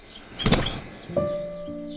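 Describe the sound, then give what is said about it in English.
A frail common blackbird, released from a person's hands back into nature, takes off with a short burst of fluttering wingbeats and flies a few feet to a nearby branch, followed by a thin, steady, squeaky tone lingering quietly in the background. “The blackbird flew a few feet away and landed on a nearby branch.”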